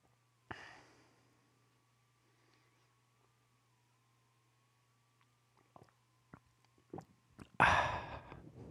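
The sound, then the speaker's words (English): Someone sips coffee: a soft breathy slurp, a long quiet pause, a few small clicks and gulps, then a loud satisfied exhale, all over a faint steady hum. “So I'm going to take my sip right now.”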